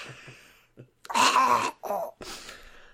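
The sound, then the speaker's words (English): Someone blows their nose: a loud, wet, honking blast followed by two shorter snorting bursts, preceded by soft breathy sniffles. “This is me blowing my nose.”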